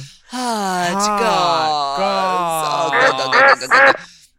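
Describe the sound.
A loud, nasal voice imitates duck quacking in one long, wavering call, ending in a few choppy, rapid quacks, alone.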